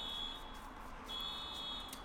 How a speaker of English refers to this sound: Meanwhile, someone's car alarm's just like going off like a motherfucker. Yeah, I can hear that. Okay. Well, I guess we'll power on with a car alarm just going off.